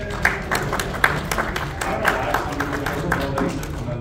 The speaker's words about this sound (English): I'm clapping because I'm excited to live.